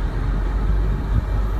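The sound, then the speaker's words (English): A car's engine and road rumble fill the moment with a steady, low, continuous drone at a fairly constant loudness, with no voices over it, as the car heads toward the speaker. “Please tell me that car is not headed this way.”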